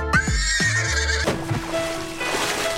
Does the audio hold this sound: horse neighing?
yes